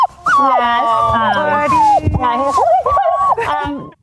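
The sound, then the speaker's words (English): Percy, Dana Perino's new seven-week-old Vizsla puppy, picked up in Ohio, whimpers in high, drawn-out whines that rise and fall in pitch, several plaintive cries running almost without pause for about four seconds. “And that whimpering, by the way, to be clear, was in fact Percy and not any of the members of the 5.”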